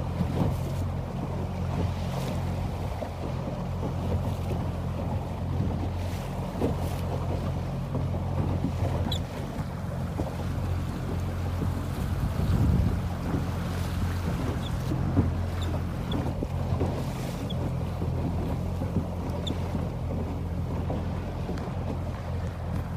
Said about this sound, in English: I'm taking a boat.